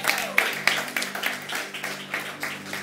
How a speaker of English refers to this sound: Let's applaud Jesus for the women of power.